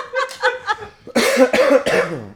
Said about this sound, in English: I'm speeding. We're all coughing.